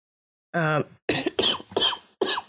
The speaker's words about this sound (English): Hey, listener, there's a lot of coughing. I'm going to be cutting a lot of coughing out. So if I miss some, just shut up. It's okay.